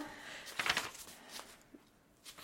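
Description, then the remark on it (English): Soft, papery rustles of novel pages being turned to look up a character's name, a few quick flips spaced out over a couple of seconds, fairly quiet with no talking. “You can hear the sound of pages turning.”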